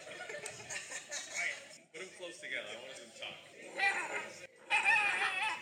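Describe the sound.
Several Shiba Inu dogs let out shrill, overlapping yelps and screams in bursts, with sharp barks mixed in; a loud, high-pitched chorus played back from a video over speakers.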